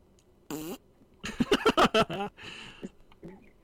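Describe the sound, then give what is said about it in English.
A loud, sputtering fart: one short blast, then a rapid run of buzzy, pitch-wavering pulses trailing off into a few softer squeaks. “I might be making one right now in my chair after listening to this.”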